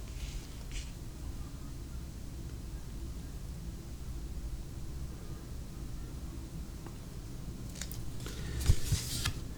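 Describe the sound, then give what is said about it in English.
A thick purple pencil scratches across paper along the edges of paint, drawing part of a painting: a brief stroke at the start, then a burst of quick, rough strokes toward the end, moderately loud over a steady low background hum. “Just to make sure I'm comfortable with it, use the purple as basically a thick purple pencil along the edges of the paint, like drawing part of the painting.”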